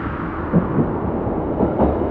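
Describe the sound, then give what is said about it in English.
A train rolls toward platform 1 of a station, a steady, loud low rumble with a rattling, noisy texture and a few brief swells, no voices heard. “The train now approaches platform 1.”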